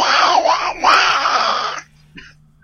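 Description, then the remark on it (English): A person does a raspy, strained imitation of a zombie walker growl, loud and continuous for nearly two seconds with a wavering pitch, then it stops abruptly into near silence. “And I'm just going to go ahead and give out my best walker growl.”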